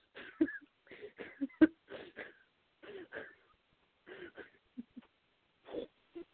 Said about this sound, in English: And some of the boys over there making sounds that sort of sound like a fish gasping for air, so...